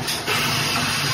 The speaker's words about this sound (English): Okay, we have an explosion on our hands, all right? So maybe the soda stream is not the place for your champagne.